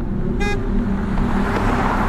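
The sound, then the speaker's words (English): A car speeds past with a steady engine roar and road rumble, broken early on by one short, bright horn toot; no voices. “Despite my effort, the car sped right past me, and I felt the wind lash out at me as it passed.”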